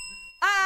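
A bell's clear ding rings out with a steady, lingering tone, then a loud, bright vocal burst abruptly cuts in over it near the end.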